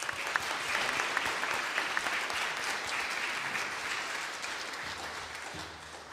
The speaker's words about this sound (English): So I'd like for you all to give a round of applause for our guest soloist today,